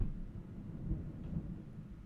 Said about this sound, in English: As thunder roars in New York City